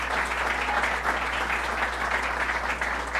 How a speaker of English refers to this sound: So thank you, Supervisor. Let's give him a round of applause for what he has done.